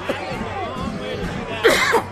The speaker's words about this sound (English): I got a cough, hang on.